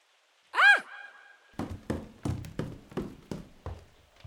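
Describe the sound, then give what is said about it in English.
A brief whining tone is followed by about seven loud, heavy knocks on Paul's wooden door, which was never locked, struck by a woman in a steady, insistent rhythm. “She knocked loudly on Paul's door, which was never locked.”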